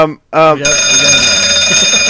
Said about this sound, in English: Fire alarm. Oh, thank you, Jesus. Oh, I've never been so happy for a bell in my life.